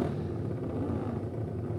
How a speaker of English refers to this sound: Fantastic deep rumble of these machines, the Junior Classic 350cc machines for this Vintage Motorcycle Club Isle of Man section contest.